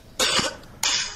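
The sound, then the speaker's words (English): Two sharp coughs, the first slightly longer and harsher, the second following after a brief pause, both loud and alone with no talking. “Coughing, just like TJ?”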